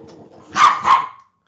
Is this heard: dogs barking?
yes